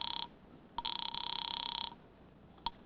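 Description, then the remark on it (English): An old-fashioned telephone bell rings from a phone booth with a rapid metallic trill, first a brief burst and then one longer ring, clear, followed by a short click. “There's a phone booth near the door.”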